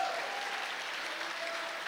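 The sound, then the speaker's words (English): Steady audience applause at an evening church service, dense hand clapping for God from a crowd filling the room at an even, sustained level with no voices standing out. “Come on and give him a hand clap tonight in the room.”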